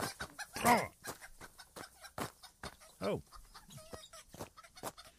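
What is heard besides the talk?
chickens clucking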